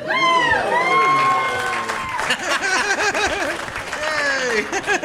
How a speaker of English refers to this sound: I love applause for something you don't even know what it is. Like, he said it like it's important, so let's applaud.